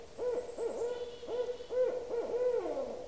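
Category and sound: bird, barred owl hooting call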